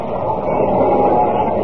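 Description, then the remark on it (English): A roller coaster car turning the final loop and coming back rumbles along its track in a loud, steady, continuous roar with a low mechanical rattle running through it, and no voices. “Well, I ran around to the other side of the roller coaster. I saw the car turning the final loop.”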